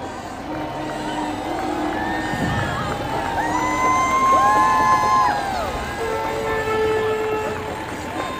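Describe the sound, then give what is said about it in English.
A dense downtown parade crowd, packed body to body outside Trumbull Kitchen, cheers steadily for several seconds, a roaring wash of many voices shot through with high whoops, shrill shouts and children's cries, staying loud throughout. “More people down here than I think I've ever seen downtown. It's body to body, shoulder to shoulder.”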